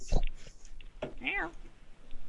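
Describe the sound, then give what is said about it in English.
A single drawn-out cat meow, fairly clear, rising then falling in pitch, preceded by a few short knocks or clicks. “Hold music, please. Hold. Meow. Hello? Meow.”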